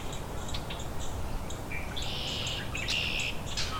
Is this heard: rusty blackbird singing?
yes